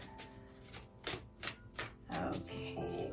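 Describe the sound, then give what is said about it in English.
A tarot deck being shuffled for a six-card reading, a steady run of soft, crisp papery slaps and riffles repeating every fraction of a second, with faint background music underneath. “So I'll keep shuffling here.”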